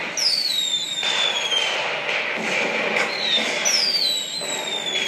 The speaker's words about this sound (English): I celebrate each achievement as symbolic of my evolution, and that's with the fireworks going in the background.